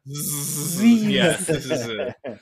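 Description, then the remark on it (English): A voice imitates snoring as "Z-z-z", the three-letter Scrabble word, with a drawn-out, buzzing hiss over a voiced hum. It wavers in pitch for about two seconds, then breaks off before one short final buzz. “Z-Z-Z, the sound of snoring, is a Scrabble legal word.”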